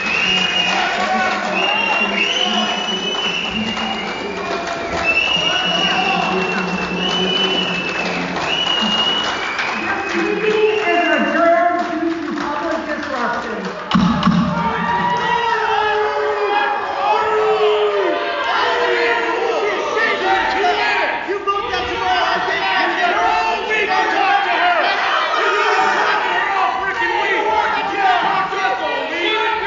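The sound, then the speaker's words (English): A loud audience yelling during a discussion of a mask mandate roars continuously. Overlapping screams, shouts, swearing and piercing whistles rise above a dense wall of voices, sustained for the whole stretch. “People were screaming, people were shouting, people were swearing, and some people even just started whistling, which I think is, that makes the game very clear that you're trying to drown out what she's doing”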